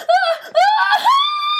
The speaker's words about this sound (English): started to scream.